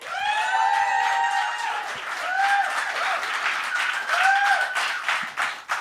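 A crowd claps steadily and densely, fairly loud, while several voices let out rising whoops and cheers over the applause before it starts to thin out.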